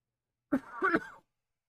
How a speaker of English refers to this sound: I got a cough. Hold on.